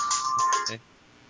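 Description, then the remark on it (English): A cell phone ringtone chirps in a quick electronic melody with a steady bright tone, lasting under a second before cutting off abruptly into quiet room noise. “Sorry, my cell phone went off.”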